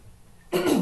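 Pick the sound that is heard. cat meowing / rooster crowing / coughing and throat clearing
coughing and throat clearing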